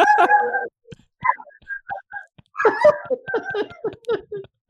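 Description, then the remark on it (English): A German shorthaired pointer howls back at a fire siren in a string of wavering, drawn-out cries broken by short pauses, with soft voices murmuring in between. “So I have a German short hair pointer and that's a hound and she's howling back at the fire siren.”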